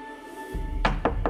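Three quick, hard knocks on a door in rapid succession, close and fairly loud, over a low rumbling background with a faint steady hum.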